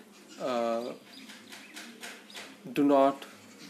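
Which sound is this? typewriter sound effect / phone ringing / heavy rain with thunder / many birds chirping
many birds chirping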